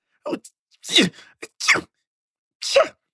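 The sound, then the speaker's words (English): A voice imitates a series of stifled, inward sneezes, several short, clipped bursts with gaps between them, held back rather than let out fully, moderately loud. “They're sneezing inward. They're holding that shit in.”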